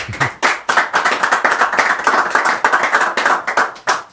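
A crowd applauds steadily for about four seconds, many hands clapping in a dense, overlapping patter that stays loud throughout, with no voices heard.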